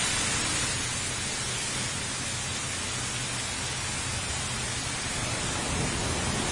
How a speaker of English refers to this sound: White noise is loading. Why is it going to load? Everything else in the world, you just hit. This is like sleeping inside a factory.